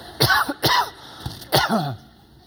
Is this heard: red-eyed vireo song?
no